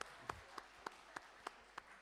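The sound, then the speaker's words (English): A faint, evenly paced run of hand claps, about seven sharp smacks in quick rhythm with no talking over them, as a group applauds someone in a star costume. “Everyone give him a clap.”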